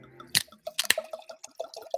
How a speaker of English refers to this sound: Well, I think I'm going to get a little fancy here. Got a nice 93 point Malbec I'm gonna pull out. A little wine ski, a little red wine and Suns. You know, so I'm gonna pour this into the glass. I'm gonna pop this open.